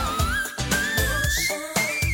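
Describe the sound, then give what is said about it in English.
A piercing, very high sung note in the whistle register by a female singer, held and gliding slowly upward over a loud backing track with a steady beat about twice per second. No talking. “She can sing 5 octaves. And that whistle... No, like everyone tries to imitate that.”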